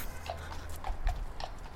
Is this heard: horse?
yes